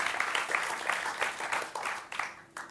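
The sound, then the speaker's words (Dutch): An audience applauds, a dense wash of many hands clapping steadily at moderate loudness, with a few sharper claps standing out before it begins to thin near the end. “Laten we Hans een applaus geven.”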